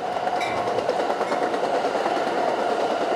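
A train rolls past on tracks that skirt the coast along the top of a bluff, on one of the nation's busiest rail corridors, with a steady, loud rumble and rhythmic clatter of wheels, filling the whole moment without any voices.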